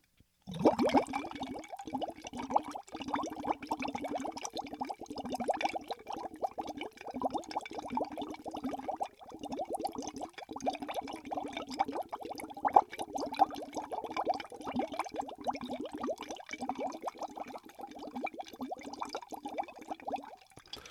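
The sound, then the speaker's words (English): Steady, continuous bubbling of air blown through a metal straw into liquid in a glass mason jar, a busy gurgling burble held fairly loud for about twenty seconds without pause, with no talking. “Ooh, let's make some bubbles.”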